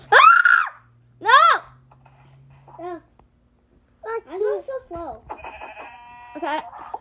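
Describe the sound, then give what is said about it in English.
Two loud, wavering bleats ring out from a sheep as it is killed, followed by a burst of higher, chattering calls and warbling tones. “I killed the sheep, but I'm trying to kill the bird, the parrot.”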